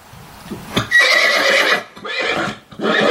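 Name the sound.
horse neighing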